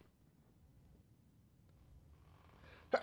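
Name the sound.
sneeze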